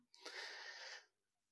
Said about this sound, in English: Clearing my throat.